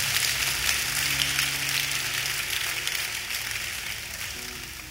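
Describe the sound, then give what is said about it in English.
An audience claps together as a clap offering to Jesus, a dense, sustained wash of applause, steady and fairly loud, slowly tapering toward the end with a faint low hum underneath. “And give a big clap offering to Jesus.”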